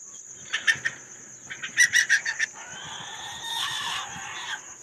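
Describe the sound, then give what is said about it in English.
Chicks squawk and cluck as they fight while a rooster watches, in two quick clusters of sharp, agitated calls, followed by a longer drawn-out call, with a steady high-pitched whine running underneath. “You see these chicks fighting? And this rooster just watching?”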